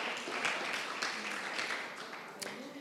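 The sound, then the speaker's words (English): A church audience claps their hands together after a reading of scripture, a dense, steady round of applause that holds at an even level, with scattered voices mixed into the clatter. “Let's just give a hand clap where the Lord had a blessing to the reading of his word.”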